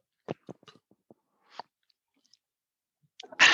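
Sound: sipping bourbon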